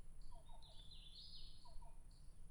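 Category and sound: bird, black-billed cuckoo calling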